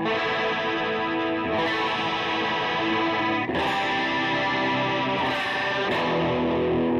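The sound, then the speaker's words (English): An electric guitar plays sustained, shimmering chords through a chorus pedal with no delay, giving a warbling, slightly gritty tone and no echo trails. The chords change a few times, loud, with no one talking. “That's the chorus. Here it is without the delay.”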